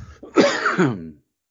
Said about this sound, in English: Well, I thought I hit my cough button and then I coughed at you again. My apologies. I won't cough at you for a third time.